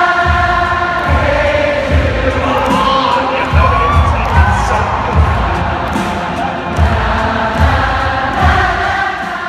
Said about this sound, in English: Just listen to this. How would you feel if you were in a concert and the entire crowd swelled up like that?